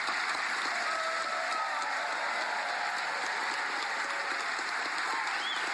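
Sustained audience applause for the Florida governor's speech, a dense steady wash of many hands clapping at an even, fairly loud level throughout, with no voices standing out.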